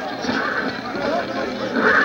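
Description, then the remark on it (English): A team of horses pulling a fire engine to a fire in Manchester, England, in 1826 neigh and whinny amid a dense, steady clatter of hooves and rumbling commotion, loud throughout, swelling slightly toward the end. “Going to a fire in 1826, a team of horses pulling the fire engine of the Norwich Union Boys Firehouse.”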